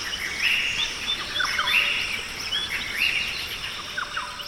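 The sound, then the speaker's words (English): Dense rainforest ambience, a live recording beamed out by sensors in the trees: a steady wash of high insect buzzing with repeated bright bird chirps and whistled calls rising and falling over it, no voices. “This is a live recording of a rainforest.”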